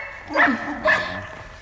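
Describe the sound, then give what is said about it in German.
A dog howls pitifully inside a house, two short, wailing yelps one after the other, moderately loud, with no talking around them. “Er ist bei Drastobatschik im Haus und heult Gott jämmerlich”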